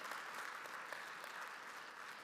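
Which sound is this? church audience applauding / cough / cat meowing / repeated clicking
church audience applauding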